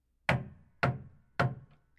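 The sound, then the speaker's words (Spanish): Three firm knocks on a wooden door, evenly spaced about half a second apart, fairly loud with a short resonant decay after each, no voices. “El lobo tocó nuevamente.”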